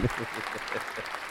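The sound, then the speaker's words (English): A burst of applause, many hands clapping in a dense, steady patter at moderate volume, lasting just over a second. “can you do a sound effect here that's like a bunch of applause or like fireworks going off or something?”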